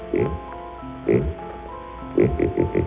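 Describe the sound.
Dudley's vocoder, a buzzy synthetic voice machine, mimics a pig as in its novelty demonstrations for crowds at the 1939 World's Fair, giving two separate grunting snorts followed by a quick run of four oinks, with a droning electronic hum between them.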